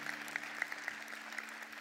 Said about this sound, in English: We can clap for that.